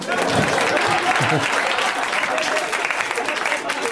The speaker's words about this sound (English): Clap.